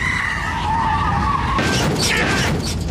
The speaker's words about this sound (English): Hey, calm down, man. Ramming car in front of me, he won't get out of the way!